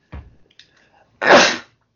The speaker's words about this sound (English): Sorry, I only ever sneeze when we're recording because that's the way it is.